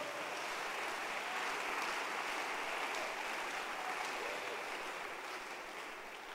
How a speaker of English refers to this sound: God bless you. Clap your hands.